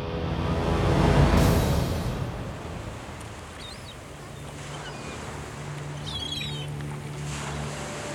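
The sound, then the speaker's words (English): A broad rush of ocean water surges and crashes over Pharaoh's chariot and army early on, then settles into a steady low rumble of sea, with a few faint high chirps and no voices. “With one last scream, Pharaoh and his army were swept beneath the waves, never to be seen again.”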